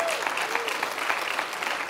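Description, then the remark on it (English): An audience at Bayside church claps for its worship team and its audio, media and children's workers, a dense, sustained wash of applause that stays loud and even from start to finish, with a faint whistle or voice tone briefly rising above it. “Come on, give them a big clap.”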